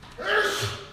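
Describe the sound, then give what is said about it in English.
A single sneeze bursts out, a short breathy blast that fades over about half a second with no talking around it. “And he might have added, bless you.”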